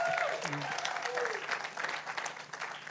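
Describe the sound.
An audience claps steadily, a dense wash of applause filling the whole stretch, with a few voices and a brief whoop or cheer rising through it near the start.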